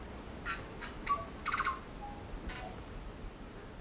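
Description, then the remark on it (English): A tui, a perching bird appearing all black with a white tuft at its throat, calls with a scattered run of short clicks, brief whistled notes and wheezy rasps, fairly faint, over a soft outdoor hiss with no voices. “A tui is a passerine or perching bird.”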